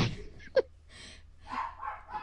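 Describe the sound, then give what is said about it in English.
A dog gives one sharp, short bark, followed by a few softer, higher yips and whines trailing off. Fairly quiet, with no talking. “You must shoot that dog.”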